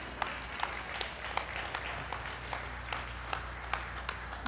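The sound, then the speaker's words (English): An audience applauds a pastor in a steady wash of clapping, with a few sharper individual claps standing out at a fairly regular pace. No one speaks over it. “I can't see who was clapping, but I would bet money.”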